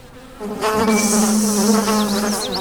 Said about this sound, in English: the sky filled with what seemed to be an army of black and yellow creatures. Bumblebee drones. Their wings made the buzzing sound.